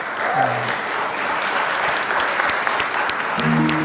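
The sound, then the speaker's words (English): Senators from both sides of the aisle stand and applaud in a senate chamber, a round of applause for Miriam's family and friends in the gallery: dense, sustained clapping that holds an even, fairly loud level for the whole stretch, with no speech over it. “And gave Miriam's family and friends a round of applause.”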